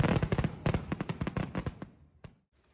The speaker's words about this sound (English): The two-day celebration ended with an impressive fireworks display.